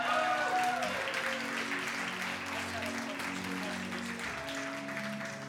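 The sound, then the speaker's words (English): A church audience claps in a steady, dense wash of applause that fills the whole stretch at a fairly even level, with a few voices mixed in beneath the clapping. “And 1 pastor fell off the stage, and now you can applaud.”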